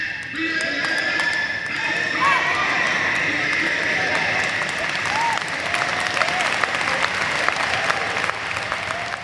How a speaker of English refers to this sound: you can hear the applause on the tape and in real life. Everybody is up on their feet.